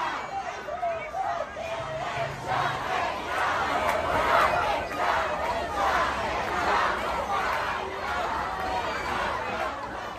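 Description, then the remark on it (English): A large protest crowd gathered outdoors right outside the New York Times building at night chants loudly and continuously, many voices blending into a rhythmic roar of shouting and babble that fills the whole scene without pause. “This is the giant crowd gathered right outside the New York Times building chanting.”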